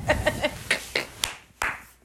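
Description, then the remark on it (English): Hands clap about seven times, three quick claps and then a few slower, uneven ones, each a sharp, bright slap with a brief ringing tail. No one speaks. “Don't clap.”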